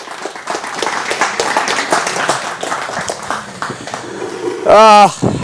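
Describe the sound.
An audience applauds steadily with dense, sustained clapping, crowd voices mixed in, ending with a loud, wavering high-pitched whoop or whistle just before it stops.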